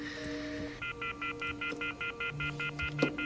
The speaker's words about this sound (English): Great. He's got the phone off the hook now.